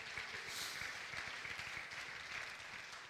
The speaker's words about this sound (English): I think we ought to clap our hands and thank God for the man of God. Hallelujah.